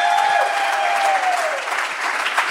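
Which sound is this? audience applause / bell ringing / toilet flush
audience applause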